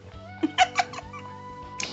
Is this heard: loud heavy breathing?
no